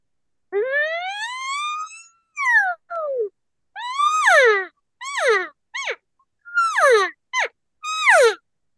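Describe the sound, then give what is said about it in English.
A tongue-blown elk call, placed on the tongue, raised up and hissed with warm air from the diaphragm: one long, rising, whistly bugle followed by a run of about eight short, sharp squeals that slide downward in pitch, loud and with no talking. “So basically put it on your tongue, raise it up, and then just start hissing.”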